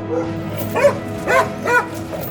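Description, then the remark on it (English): A dog barks aggressively three or four times in quick, uneven succession, loud, over a steady low background hum with no talking, as it runs away after biting a person in the back of the leg. “And as soon as I turned away and didn't look at the dog came up silently, bit me in the back of the leg, and ran away barking ferociously.”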